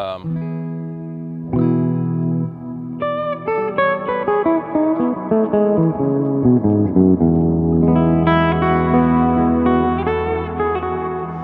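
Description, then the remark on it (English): Sustained instrument notes drenched in a big, washy reverb from a Night Sky effects pedal, each new chord blooming over the lingering tails of the last, with a steady loud level and no talking. “I'm really just using it as a you know, big reverb right now.”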